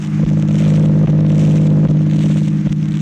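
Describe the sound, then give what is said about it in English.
The engine of Don Bestor's car drones steadily as it drives Jack Benny and Mary along, a loud, continuous low hum with a faint rattle and no voices over it. “It's a nice car you have, Don.”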